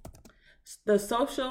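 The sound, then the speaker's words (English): A brief flurry of quick, light keystrokes on a computer keyboard, fairly soft, as someone looks up the title of a Netflix documentary, followed by a short pause before someone begins talking loudly over it. “That's me typing my computer.”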